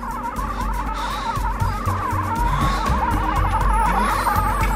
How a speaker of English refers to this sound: It's a really horrible noise. Yeah, it's this high-pitched hum, and it goes on for this entire scene, because Tommy just keeps using it, and as long as there's a special effect going, they feel the need to have this hum